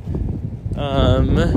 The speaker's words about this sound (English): I'm gonna cross the street to the sunny side. Just wish the wind would stop blowing